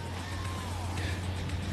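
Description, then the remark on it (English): A phone line drops out: the caller's voice is gone, leaving steady hiss and a low droning hum, with a faint wavering tone sliding downward early on. “We lost you there for a second.”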